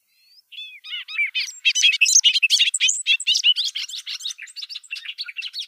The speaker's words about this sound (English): And the Bobolink call isn't something I was familiar with, so I've looked it up online, and we can play a little bit of it now.